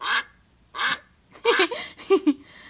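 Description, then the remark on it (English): A duck quacks about five times, loud, in raspy, irregular bursts with short gaps between them, played from a recording of duck sounds. No one speaks. “It's probably just going to be quacks, unfortunately.”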